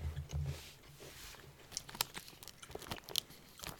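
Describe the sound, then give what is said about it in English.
Biting and chewing of crunchy biscuits with a sweet chocolate flavouring inside, in Japan: a series of crisp, sharp crunches with irregular rhythm, quiet, with no talking. “So the biscuits are very crisp and crunchy, and mm-hmm.”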